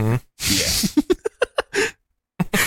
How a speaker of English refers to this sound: How do we go from rodeo to butthole? I farted. That's how.